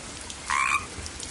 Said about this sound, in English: Oh, wait, look at those frogs over there.